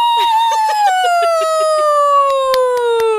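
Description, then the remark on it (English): A person imitates a timid wolf howl with one long, sustained vocal tone that starts fairly high and slowly slides downward, steady and unbroken for about three seconds, with a few soft clicks alongside. “That's a nice howl.”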